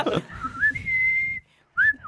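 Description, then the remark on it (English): A person whistles the Dave Warnocky theme song, a sustained melodic line with gliding pitch, pausing briefly before a final rising whistled note. “That's the Dave Warnocky theme song.”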